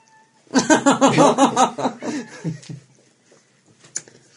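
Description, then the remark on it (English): A cat meows loudly and insistently up close, a rapid string of wavering, warbling meows lasting a couple of seconds before trailing off into faint rustling. “What's the matter, kitten?”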